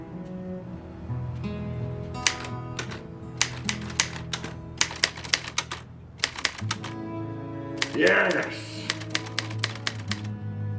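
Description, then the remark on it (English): Typewriter keys clack in quick, irregular bursts of sharp strikes, over a steady tonal backdrop that sounds like music, with a brief swelling sound partway through. “Punch the keys, for God's sake.”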